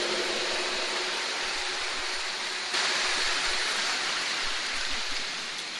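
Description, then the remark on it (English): A church audience applauds the choir in a dense, steady wash of clapping that holds at a fairly even loudness for about six seconds, with no voices standing out above it. “Let's give the Lord a big round of applause for them.”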